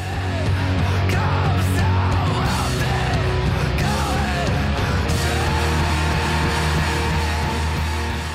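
A man screams at full force over loud, dense rock music, his raw strained howls rising and falling in the first few seconds before the wall of instruments carries on.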